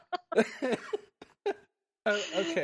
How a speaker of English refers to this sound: the laughing's getting me to cough. I'm sorry about that, folks. I don't mean to cough in your ears.